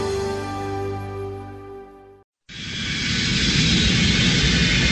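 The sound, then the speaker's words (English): A steady, loud airplane cabin roar of engine noise starts after a brief silent break and drones on evenly. Before the break, a sustained tonal hum plays. “I am so glad we ate before we got on the plane.”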